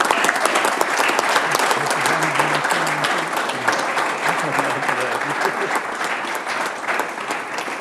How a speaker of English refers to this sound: Please, if we can, have a resounding round of applause.